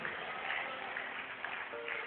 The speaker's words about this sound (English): Those of you clapping your hands, may God bless you.